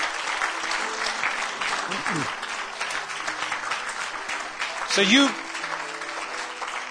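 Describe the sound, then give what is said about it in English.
An audience applauds steadily for the whole stretch as a hand clap of praise to the Lord, a dense, even wash of many hands clapping, while a man's voice briefly speaks over it. “You ought to give the Lord another hand clap of praise.”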